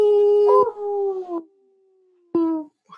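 A wolf howls in long, sustained tones that slide gently downward, pausing briefly before a second, shorter howl rises and fades. The calls are loud and clear, with no talking.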